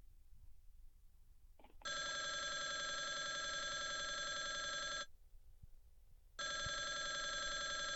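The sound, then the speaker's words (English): A telephone at Pig Shack rings loudly in two long bursts, each a steady buzzing trill lasting a few seconds, separated by a short pause, with no voices present. “Answer the phone.”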